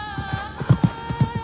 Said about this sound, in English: As Bijan rushed forward on foot, the young lord of Kalat turned his horse around to gallop toward the castle.